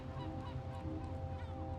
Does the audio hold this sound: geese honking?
yes